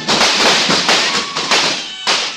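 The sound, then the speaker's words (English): A rapid volley of loud revolver shots, fired by a man from under a table at professional killers, about eight or nine sharp bangs in quick succession with short ringing tails, with no talking. “I slid under the table fast and started shooting.”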